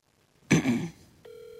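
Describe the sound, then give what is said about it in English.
A short, muffled burst of noise, then a steady electronic phone ringing tone starts on speakerphone and carries on to the end, fairly quiet and slightly tinny, with no one talking, as a call is placed to Franco's. “Thank you for calling Franco's on pain.”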